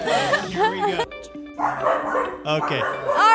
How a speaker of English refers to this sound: I think we're up. The dogs are barking.